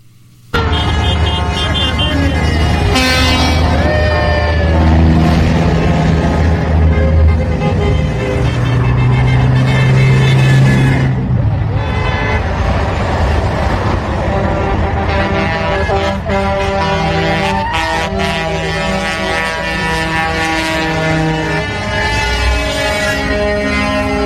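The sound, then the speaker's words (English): A convoy of over 2,000 heavy trucks in the United States, headed to D.C., rumbles past with deep engine drone, while many horns blare and honk continuously in overlapping, sustained blasts, loud throughout. “2,000 trucks headed to D.C.”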